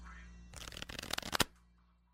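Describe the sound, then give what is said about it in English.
A deck of playing cards is shuffled close by, a quick burst of rapid riffling flutters lasting about a second before stopping, with no talking. “Give me the Joker out of there. I'll just mark it with a pen. And he'll shuffle it, and you guys will try and play some Bridge.”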